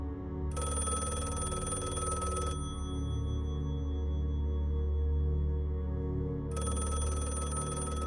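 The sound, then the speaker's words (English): A telephone bell rings in two long bursts separated by a few seconds of quiet, bright and jangling over a steady low background hum, with no voices. “As she's laying on the lawn, the phone rings.”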